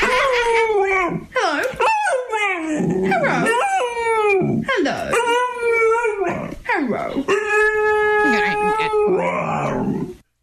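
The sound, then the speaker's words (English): A dog makes a run of loud, howling vocalizations with rising and falling pitch, almost like talking, as if saying hello, several drawn-out calls back to back over about ten seconds. “And I want you guys to be the judge if you feel like this dog in particular, that you can hear so dumb. Him saying hello.”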